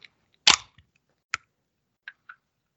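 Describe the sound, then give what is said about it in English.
A can of Spindrift Raspberry Lime, to be poured over ice into a mug, cracks open with a sharp pop and a brief fizzing hiss, followed by a few faint, scattered metallic clicks and taps. No one speaks. “That wasn't a very good sound, was it? Cans are hard.”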